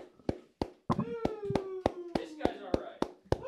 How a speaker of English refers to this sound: Let's see the audience cheering and clapping here. Why don't you do fucking something, man? Do something. Cheer. Yell.